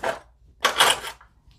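Scissors snip a random chunk off a roll of string: a short crisp cut, a pause, then a louder, longer scraping snip, followed by a faint click. No one speaks.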